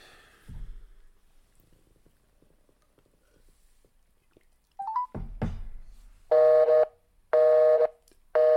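A telephone clatters, then a loud busy signal starts: a harsh electronic tone pulsing on and off in an even rhythm, three bursts, clear with no talking.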